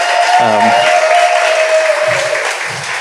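A steady round of applause from a crowd, dense clapping filling the whole stretch and tapering slightly at the end, with a few faint voices and cheers mixed in.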